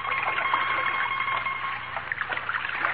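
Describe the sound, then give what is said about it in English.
Water swishes and splashes continuously as a mandolin, used as a paddle, churns through it, a steady sloshing with small irregular bursts and a faint thin hum underneath. “Personally, dearie, I think you paddle with it better than you play it.”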